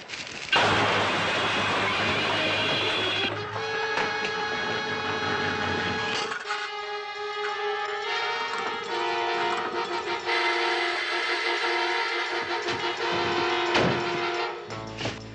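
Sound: train running on rails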